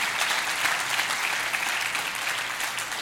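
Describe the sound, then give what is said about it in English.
A church audience claps steadily in praise, a dense, continuous wash of many hands slapping together at a loud, even level with no voices standing out. “Would you clap your hands and praise him with me.”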